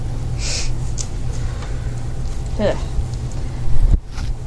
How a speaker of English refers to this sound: I'd take a sniff in return. Okay. Cheap gin. That's sniff. What you're getting. Sniffing.